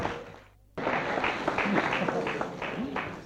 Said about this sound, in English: Here he is. Give him a clap.